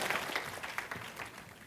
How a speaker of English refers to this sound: Somebody clap your hands and say amen, would you?